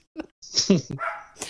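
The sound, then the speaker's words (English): A dog barks several times in quick, uneven bursts, moderately loud, with a hissy, noisy background between the barks. “Well, I think it was fun, dog barking and all.”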